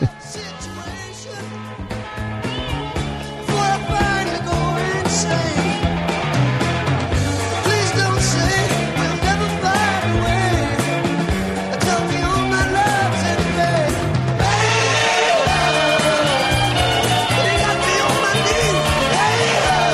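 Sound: rock song recording played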